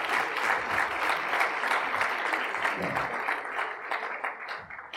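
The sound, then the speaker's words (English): Steady audience applause as a crew is welcomed to the stage, a dense wash of many hands clapping at once, loud and sustained before tapering slightly near the end. “Y'all may give a round of applause.”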